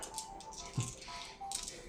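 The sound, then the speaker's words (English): Six dice are rolled in a quick clatter of small hard objects tumbling and clicking across a surface, with a brief thump partway through and a faint hum underneath. “Alright, roll your six fight dice.”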